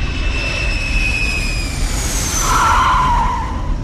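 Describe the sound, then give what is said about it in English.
A Cutlass spaceship roars in for a hard landing on a short landing strip, heavy engine rumble under high whining tones, then a loud scraping skid screeches near the end. No voices. “Whew, we made it. Holy God, this landing strip is short.”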